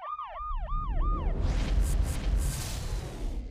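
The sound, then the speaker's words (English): A police siren yelps in quick rising-and-falling sweeps, about five in a row, as police cars pull up at a bank during an armed robbery with hostages, then cuts off abruptly, leaving a loud rumble of engines and road noise. “The team looked at each other and nodded, rocketing to their destination, arriving just as the police cars pulled up.”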